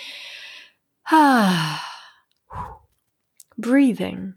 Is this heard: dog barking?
no